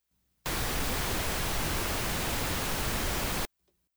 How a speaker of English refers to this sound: So that's a bit of an aside, but we can try the same exercise with pink noise. All right, let me do this. So here's our pink noise.